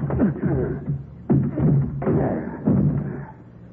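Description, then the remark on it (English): The door of a wrecked car with its whole front end smashed in being forced open: four heavy, dull thuds and jolts spaced about a second apart, with grinding strain and low effortful grunts between the blows. “Hey, give me a hand with this door, will you, Sheriff? All right, force it open.”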